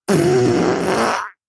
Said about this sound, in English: Oh my lordy, what the hell was that? Not only was the sound scary, but the smell is scary as well. You're going to have clients fart all the time.